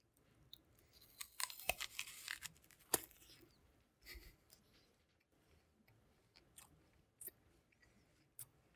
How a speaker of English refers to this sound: All right. He's got the nice chewing going on.